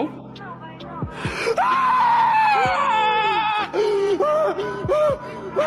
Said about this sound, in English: What the fuck is he screaming like that? Because he's in a church. And there's like this woman sitting. No fucking way. I don't believe it. The way he's screaming is so scary.